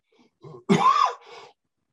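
A single harsh, chesty cough from chest congestion caused by a virus, fairly loud, trailing into a short rough rasp with no talking around it.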